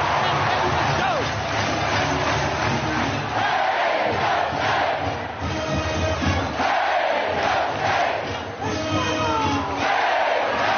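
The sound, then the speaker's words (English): A packed stadium crowd, shoulder to shoulder and unmasked, roars and chants in unison, a dense, sustained wall of many voices with rhythmic swells and shouted bursts rising above the din, loud throughout. “Listen to that crowd.”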